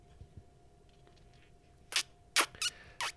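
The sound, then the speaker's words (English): A quick run of four squeaky, wet kiss sounds, loudest toward the end, after a near-silent start with a couple of soft low thumps. It is a nervous kiss at the end of a date at the entrance to an underground station. “Sorry, my kiss squeaked.”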